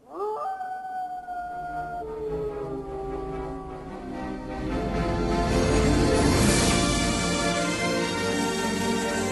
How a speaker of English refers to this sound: But Balto sees the aurora that Jenny set for him, and he wolf howls, and this Paul Revere's everyone awake.